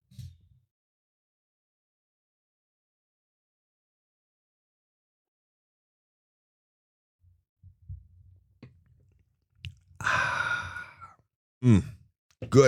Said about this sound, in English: I need to take a little sip of coffee here. Grab your coffee. Let's fellowship together here. For just a moment, with a little sip of coffee or tea, water, orange juice, whatever your beverage of choice might be.